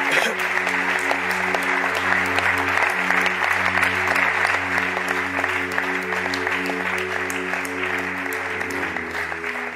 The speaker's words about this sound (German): Lasst uns einen Applaus geben für alle, die diesen Schritt heute gemacht haben.